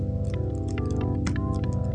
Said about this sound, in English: You know, I can get a classic organ here. Hold on there.